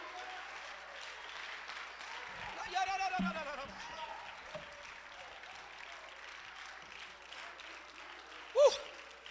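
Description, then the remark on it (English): An audience at a church revival service claps steadily in a dense, continuous wash of applause in praise, with shouts and cheering voices rising above it, including a louder burst of shouting near the end. “Clap your hands if you can. Shout with your voice if you can.”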